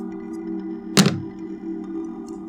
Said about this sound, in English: That was my dice. I have very big dice. You have very big dice. I have fucking massive dice.